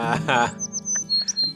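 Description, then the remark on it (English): A voice imitates a bird with two loud, harsh squawks, followed by a string of thin, high-pitched chirps and whistles that fade in and out. “I'm... a bird.”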